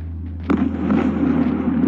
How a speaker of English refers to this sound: Explosions after explosions. These are what people in Kyiv, the Ukrainian capital, and other parts of the country are experiencing.